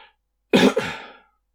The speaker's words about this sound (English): … starts coughing, trying to get the attention of all the people around the room.